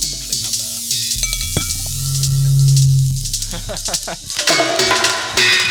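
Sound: glasses clinking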